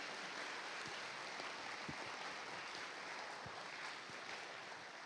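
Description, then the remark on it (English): An audience applauds steadily, a dense wash of many hands clapping at once that holds an even level for several seconds, with a few sharper individual claps standing out. “Can we give them one more round of applause?”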